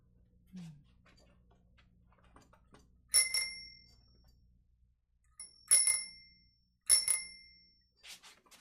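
A bicycle bell rings three times with uneven gaps, each bright metallic ding lingering briefly before fading, clear against a quiet background with a few faint clicks at the end.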